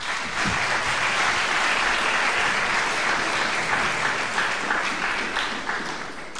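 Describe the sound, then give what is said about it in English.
Steady, dense applause from an audience at LSE welcoming Martin Kemp's talk, a continuous wash of many hands clapping at an even loudness for several seconds before easing slightly at the end, with no talking over it. “But actually give a very warm welcome to your talk.”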